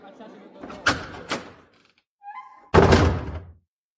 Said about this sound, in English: The cafeteria doors opened wide for the students.